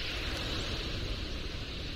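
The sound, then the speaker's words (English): A dense, steady roar of countless wings as a large flock of birds bursts up off a tide flat on the Copper River flats. It is a loud rushing whoosh that holds constant for the whole two seconds, with no voices. “That roaring sound is the wings of these birds as they burst up off the tide flat, circle back down again and right to work.”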